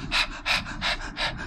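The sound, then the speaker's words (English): A voice imitates a large dog panting: four quick, breathy huffs in a steady rhythm, fairly loud, with no other talking. “Yeah, he's in there. He's panting.”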